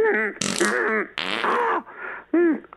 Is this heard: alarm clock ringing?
no